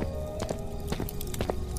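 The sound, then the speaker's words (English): Shuffling footsteps scrape along an empty street in uneven pairs, about six soft steps in under two seconds, over a steady low background hum. “The sounds of shuffling footsteps could still be heard behind them.”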